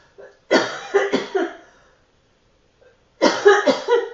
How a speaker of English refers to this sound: Okay, let me see. Let me just cough here for a second.